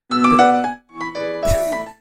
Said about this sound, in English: Classic Nokia. That was the ringtone. Fancy version though. Yeah. There was an even older version, that's though, like a, wasn't there? That's not the 8-bit version. That's like a real piano. That was like the polyphonic ringtone.